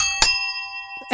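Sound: three bell rings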